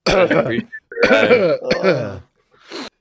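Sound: imitated coughing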